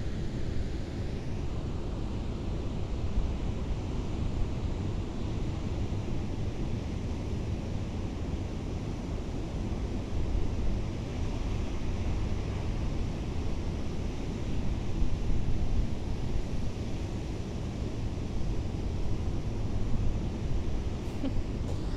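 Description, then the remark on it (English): A steady, full roar of ocean surf fills the scene, with waves washing in and a slight swell in loudness partway through, mixed with a rushing, wind-like hiss and no voices. “The ocean is so massive.”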